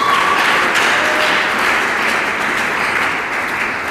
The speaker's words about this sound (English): Clap your hands and thank the Lord.